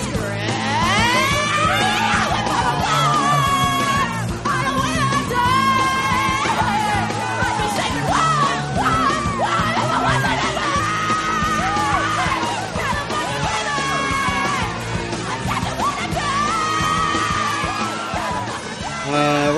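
Several voices screech and yell in a loud, wavering mock singing, pitches sliding up and down continuously for about twenty seconds, close and at full volume with no pauses.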